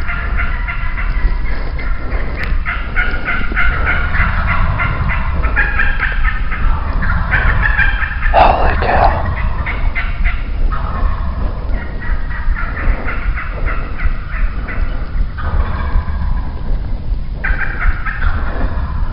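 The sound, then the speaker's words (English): A chorus of wild turkeys gobbling repeatedly during a live turkey hunt, overlapping rattling calls from several birds, steady throughout with a low rumbling background and no talking. “So if I have a choice, I'm going to try to make it so that I'm going to be on the west side in the morning, east side in the afternoon of a turkey.”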